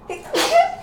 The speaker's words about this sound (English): Bless you.